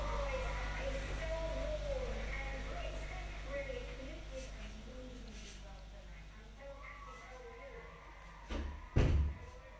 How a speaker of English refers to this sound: Close the door to the room, please.